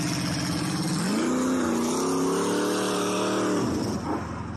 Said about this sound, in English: No. How did he do that, dude? Oh my God, the car just went out.